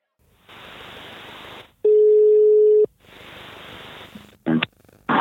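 An outgoing phone call to the head of the Lanaken Youth group ringing: two bursts of hissy, noisy ringback separated by a loud, steady tonal ring, followed by a brief click and the call connecting, with no talking over it.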